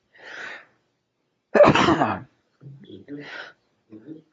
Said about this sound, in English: I've been sneezing all day long.